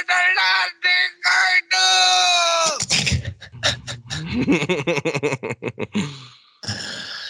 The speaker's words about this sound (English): Mr. Kim is freed by a hungry dog. Like a dog comes by, he's like, hey dog, lick the sweet and sour sauce.